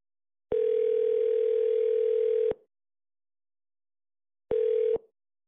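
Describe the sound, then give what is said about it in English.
An incoming call's ringing tone sounds twice on a phone: a steady electronic hum held for about two seconds, a pause, then a short second burst that cuts off. Clear, with no voices. “That's literally a phone call that's coming in right now.”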